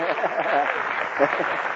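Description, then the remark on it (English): A steady wash of crowd applause for Richard Alpert, Baba Ramdas, fills the whole stretch, dense and fairly loud, with scattered voices and cheers mixed into the clapping. “How about a round of applause for him?”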